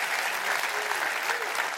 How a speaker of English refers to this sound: Clap your hands.